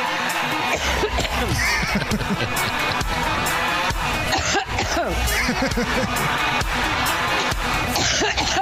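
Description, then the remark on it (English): A person coughs in a run of harsh bursts, clearing their throat, over a continuous loud murmur of a large crowd that persists throughout. “Little thunder cough in honor of Pantsuit Patty's birthday.”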